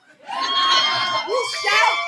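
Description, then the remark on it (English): An audience erupts in loud cheering and whooping, answering a question by a round of applause, many voices shouting together over a wash of applause, holding steady for about two seconds after a quick swell. “By a round of applause, not drunk white lady shouting.”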